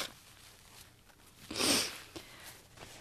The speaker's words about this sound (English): I forgot to blow my nose here. Hang on a second.